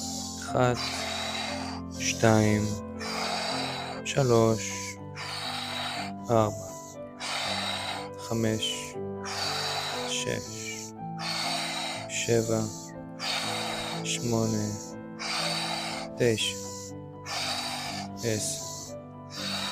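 Rapid, forceful in-and-out breaths of a breathing exercise, a set of 20 breaths, repeat at a steady, quick rhythm, roughly one per second, clear over a soft sustained musical drone.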